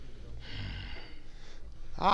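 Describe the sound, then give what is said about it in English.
Heavy breathing of a man into a microphone: a long, rushing breath lasting about a second, then a softer one, ending in a short voiced sound like a gasp or the start of a word. “No, I think that means he's breathing.”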